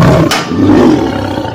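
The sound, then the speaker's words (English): A tiger lets out a loud, deep, rumbling roar that holds steady for a moment, forceful, with no voices. “孔雀 or a tiger?”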